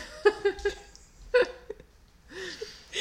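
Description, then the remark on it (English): Short rubbery squeaks from an exercise ball, three quick ones then another louder one, sounding like farting noises; a breathy rustle follows near the end. “Weird farting noises on our podcast is not cool. It's an exercise ball, not anyone's butt.”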